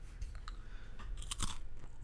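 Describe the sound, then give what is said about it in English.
Crunchy biting and chewing of crunchy hot dogs, a series of sharp crackling bites in an irregular rhythm with no talking. “Pass me over one of those crunchy hot dogs.”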